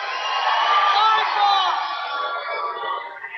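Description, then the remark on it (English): St. Cecilia basketball fans cheer loudly, applauding the referee's call giving the ball to St. Cecilia in the first quarter of a game against Adams Central, in a steady roar of whoops and shouting voices, holding strong for about three seconds before easing slightly; no one speaks over it. “St. Cecilia fans across the way applauding the referee's choice there.”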